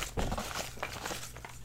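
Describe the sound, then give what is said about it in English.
Crackly rustling of a single large sheet of paper with names written on it being handled, with several uneven bursts of crinkling over a low steady background hum, and no voices. “It's a big piece of paper.”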